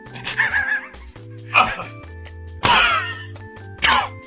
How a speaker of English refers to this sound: Alright, we got the cough set up. We got it out of the way. We go through like at least one coughing fit per episode.